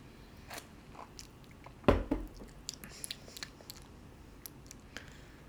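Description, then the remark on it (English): Mouth sounds of someone sipping a traditional Irish-style red ale beer and swallowing: one sharp, loud gulp near the middle, followed by a few soft wet clicks over a quiet background, with no talking. “I've never tried like a traditional Irish style red ale, so I'm going to take one more sip and then give you guys my rating.”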